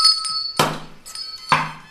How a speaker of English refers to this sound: What is that? Give me the bell. Ring your bell.